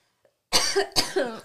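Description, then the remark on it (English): A few loud coughs in quick succession after a brief silence, each a sharp burst trailing into a rough, throaty rasp. “Sorry, I have to cough.”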